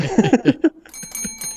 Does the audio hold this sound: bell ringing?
yes